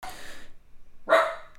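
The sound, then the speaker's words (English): A dog barks twice, a brief bark at the start and a louder, sharper one after a short pause, with no one talking. “Give me 1 second. I was going to yell at this dog.”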